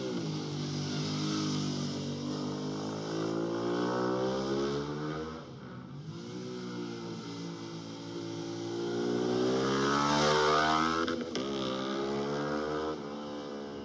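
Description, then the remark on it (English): A V-twin motorcycle weighing 525 pounds revs up and down repeatedly through a loud aftermarket Yosh exhaust, its deep throaty harmonics rising and falling close by, with a brief dip before climbing again. “Now this is a little bit closer. Still stock. And now this is switched over to a Yosh exhaust.”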